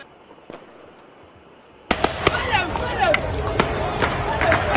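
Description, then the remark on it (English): After a quiet start, a loud, chaotic street clash erupts at a protest against COVID measures in Brussels, Belgium, on a Sunday: a dense crowd roars and shouts while sharp bangs and pops, like firecrackers or blasts, go off repeatedly. “Protests against COVID measures descended into chaos and violence in Brussels on Sunday, with some demonstrators attacking the building of the European Union External Action Service.”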